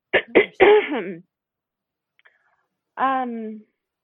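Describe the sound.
A person clears their throat: two quick rough bursts run into a longer gravelly rumble, then a brief pause and one more short voiced hum.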